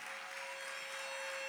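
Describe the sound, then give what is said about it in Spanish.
An audience applauds for the Lord Jesus Christ during a sermon, a dense, steady wash of many hands clapping at even loudness throughout, with a faint constant tone humming underneath. “Fuerte ese aplauso, porque para el Señor Jesucristo.”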